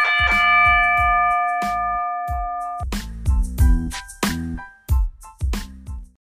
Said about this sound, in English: With that said, let's get this show started. Ring the bell.